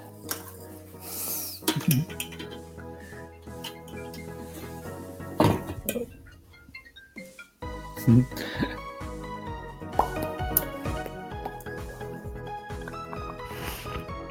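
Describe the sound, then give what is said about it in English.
Coffee, a Thunder Kiss blend, poured into a cup, with a few sharp clinks of ceramic and utensils at irregular moments over a steady, fairly quiet background hum and tonal sounds. “So you get to listen to me pour some coffee.”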